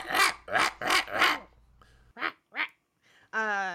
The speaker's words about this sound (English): Like, just because you wanted to bark at you. Like, and it wasn't even that good of barking. They had to, like, zhuzh it up with sound effects to make it sound alien and not just like a little